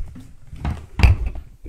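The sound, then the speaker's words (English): A microphone with a stuck cord gets knocked over: a soft bump, then a loud, boomy thud with a brief clatter, followed by low rumbling handling noise. No one speaks. “Uh-oh, you knocked the microphone over.”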